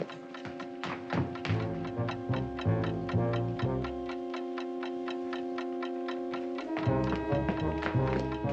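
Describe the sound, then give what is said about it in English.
A time bomb hidden in the handle of an umbrella left in an umbrella stand ticks steadily, its sharp, evenly spaced clicks running throughout over sustained dramatic musical tones and low thudding pulses; no one speaks. “The umbrella handle is ticking. Holy time bomb.”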